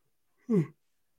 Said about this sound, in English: Listen to me yawn right now.